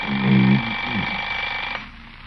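A steady, high-pitched alarm clock ring holds for nearly two seconds, then cuts off abruptly, with a brief low hum underneath at the start and quiet afterward.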